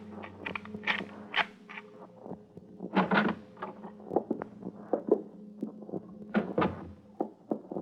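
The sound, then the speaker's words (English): A locked door with a light showing under it is forced open: repeated heavy thumps and jolts with creaking, rattling strain between them, uneven in rhythm over several seconds, with no voices. “It's locked. Here, I'll get it.”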